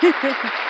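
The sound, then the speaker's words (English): A brief burst of applause given in thanks to nurses, doctors and other essential workers. A dense wash of clapping holds steady for under a second, with a low murmur of voice mixed in at the start. “And so, you know, I'm going to give you guys a round of applause for that.”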